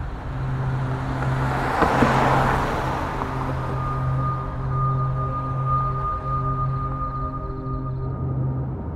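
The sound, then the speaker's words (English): A small car drives along Highway 110 from Phoenix to Los Angeles, past Palm Desert toward Palm Springs, around 2:55 a.m., with a steady engine drone and road rumble, a louder whoosh of passing traffic swelling early on, then a constant hum alone. “A small car traveling on 110 from Phoenix to LA passed Palm Desert and headed towards Palm Springs.”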